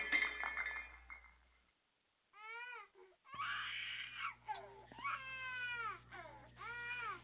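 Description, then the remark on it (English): A pile of dishes crashes in a kitchen: a loud clattering crash of dishes and breaking glass for about a second and a half, then a pause, followed by repeated high, wavering wails that slide up and down in pitch. “It was just a pile of dishes.”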